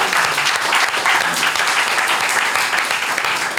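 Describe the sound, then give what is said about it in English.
A round of applause from a small group for guests Yotam and Noor, dense overlapping claps forming a steady, even wash of sound that holds at a constant level for a few seconds. “Guys, round of applause for Yotam and Noor.”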